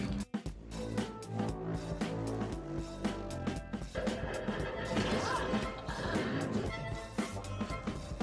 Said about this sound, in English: And now we're back to smashing robots.